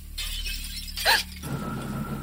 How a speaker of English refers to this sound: I'm halfway to the bathroom when the sound of glass breaking downstairs freezes me in place.